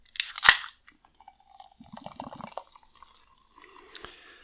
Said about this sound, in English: Yep, it sounds like when you pour sparkling water into a glass.